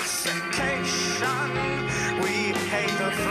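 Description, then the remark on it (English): Dense, loud Armenian folk music plays continuously from a recording, with bright melodic lines over sustained harmonic layers and shifting phrases, steady in level throughout and no voices. “Armenian folk music, says Man Godson”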